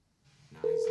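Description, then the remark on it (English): A phone call rings out with a steady electronic tone that starts abruptly near the end, loud, with only faint background noise before it and no one talking; the person being called does not answer. “No, he's not answering.”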